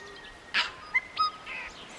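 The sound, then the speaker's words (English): A tui calls with a string of varied electronic-sounding notes: a broad rasping burst, sharp clicks, pure whistled tones and a brief buzzy phrase, all mid-to-high pitched over a quiet background with no talking. “But a particularly R2-D2-esque Tui, definitely not from the motherland.”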